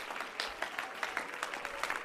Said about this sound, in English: Would you clap your hands and shout unto the Lord with a voice of triumph? We're here to worship.